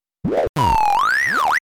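A censor-style sound effect: a short arcing electronic tone, a brief gap, then a longer one that holds steady, glides upward, dips and springs back up in a cartoonish, boing-like way. No voices.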